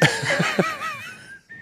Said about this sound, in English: Well, I think we all heard the fucking whistle.